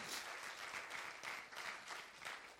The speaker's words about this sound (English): Why don't we clap our hands to the Lord? He's heard everything you said.